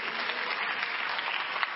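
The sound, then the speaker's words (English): An audience claps steadily, a dense crackle of many hands at an even level through the whole stretch, with no voices over it. “You didn't clap for me.”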